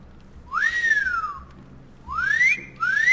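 A person practicing a whistle blows a few clear sliding notes: one rising-then-falling glide, a pause, then two more upward swoops in quick succession, alone against a quiet low hum.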